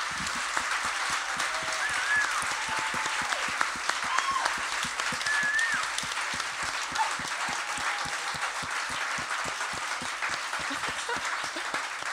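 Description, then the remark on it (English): Sustained audience applause after a poetry reading, a dense steady patter of many hands clapping at an even loudness for about twelve seconds, with a few faint whoops or cheers rising over it. “Please give a round more of applause.”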